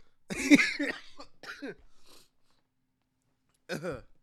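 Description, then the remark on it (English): A person coughs several times in a quick cluster, goes quiet for over a second, then lets out one more short cough. “Was I coughing last episode?”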